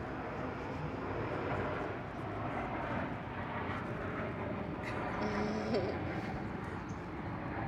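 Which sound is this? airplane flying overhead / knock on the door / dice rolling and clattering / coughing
airplane flying overhead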